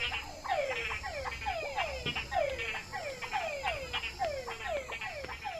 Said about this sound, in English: I'm in Santa Catalina, Panama, walking home from dinner. It's actually very late here because it's before 9. But I'm walking by a stream, and these, I'm guessing, are frogs. Listen to these frogs.